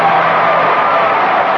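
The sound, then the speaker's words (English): A large crowd roars with cheers and applause for the U.S. Army at a celebration of its 200th anniversary in America, a loud, dense wash of voices and clapping that holds steady for the whole moment. “Give me a little cheer there, please. Let's give the Army a big hand.”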